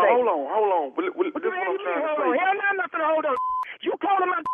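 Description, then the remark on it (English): A voice talks over a thin, phone-like line, then a couple of short, steady electronic beeps of telephone dialing tones cut in near the end as the caller dials a number from caller ID to call back. “This your number on my call ID right now? Let me call you right back.”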